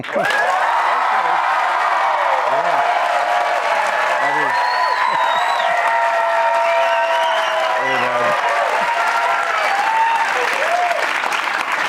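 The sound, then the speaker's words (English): A large crowd of BYU fans applauds loudly and steadily, with cheers and whoops rising above the dense clapping throughout, like a packed stadium or arena responding enthusiastically. “By your applause, how much do you appreciate Kalani's end zone walks pregame?”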